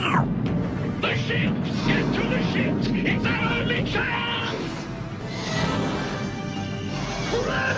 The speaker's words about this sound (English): jaws are shutting, opening and shutting, they made this cartoon kind of sound. And I was like, are they doing like a cartoon crunch?